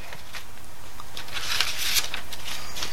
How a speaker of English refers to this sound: Shuffling the deck.